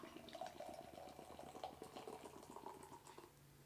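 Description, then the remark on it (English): Soda pours hard and steadily into a cup, a continuous splashing gush lasting a few seconds before it eases off, leaving minimal bubbles and a little foam. No one speaks. “You know, watching when you listen to that pop, it just sound different.”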